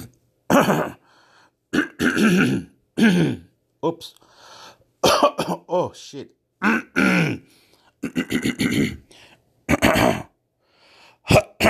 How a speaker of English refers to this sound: Oop, I got the hiccups. Oopla. Oops, sorry.